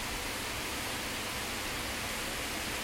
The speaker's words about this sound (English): Let those raindrops fall upon me. Let them soothe me. Let them wash my woes away. Oh, how I love the rain. Rain, I love you.